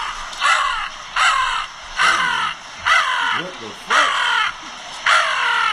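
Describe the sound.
A man imitates crow caws: six loud, harsh, raspy calls in a steady, evenly spaced rhythm, with short pauses between each caw.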